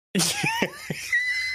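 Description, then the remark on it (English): A single voice imitates shrieking concert fans with a burst of high-pitched, wavering squeals broken by a few choppy gasps, loud for about a second and a half. “They also are screaming loudly.”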